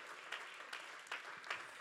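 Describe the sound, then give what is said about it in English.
An audience claps steadily as a hand clap of praise to the Lord, with dense overlapping hand claps forming a continuous wash and a few louder bursts roughly every half second. “Go ahead, give the Lord a hand clap of praise.”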